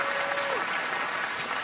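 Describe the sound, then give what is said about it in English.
A crowd claps steadily, a dense, even wash of applause holding at a constant level throughout, with a brief tone gliding down early on beneath the clapping. “Applause to that.”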